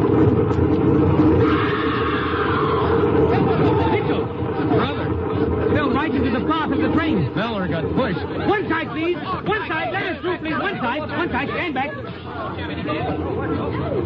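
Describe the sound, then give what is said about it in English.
A dense crowd chatters on a train platform, many overlapping voices forming a steady babble over a low rumble, holding a constant loudness throughout. “Hey, look, that crowd over on the platform.”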